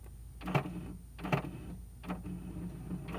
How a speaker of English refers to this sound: My printer is freaking out.